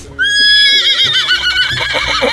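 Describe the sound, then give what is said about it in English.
A horse lets out a loud whinny: a sharp high-pitched cry that starts abruptly, then trembles and wavers as it trails off over about two seconds, with no voices. “The world's tallest horse also died this week, and Wilt Chamberlain and Andre the Giant are wearing a pantomime horse costume to welcome it.”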